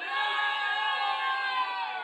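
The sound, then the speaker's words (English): The Elysium crew club crowd roars and cheers together on an MC's count of three, a dense, steady wall of shouting and whooping that holds loud and even for about two seconds with no one speaking over it. “Elysium crew, noise on the count of three.”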